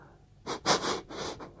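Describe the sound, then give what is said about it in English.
A pet sniffs hard underneath a door, trying to get its nose under: several quick, breathy sniffs in an uneven burst, with faint background hiss and no talking. “You can hear him go, and he'll start sniffing underneath the door. Trying to get his nose under there.”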